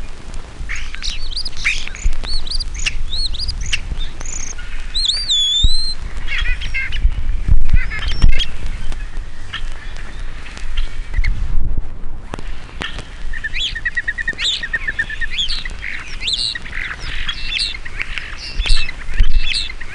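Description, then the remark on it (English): A songbird pours out a long, varied song mixing whistles, chirps and harsh squawks, including imitations of other birds' calls, fairly loud over a low background rumble. “Here is a sample of its song and some of its imitations.”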